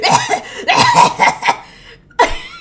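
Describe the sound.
A voice imitates the harsh, hacking cough of someone who inhaled from a bong: a run of loud, raspy bursts, then a short pause and one final forceful hack, with a laughing edge.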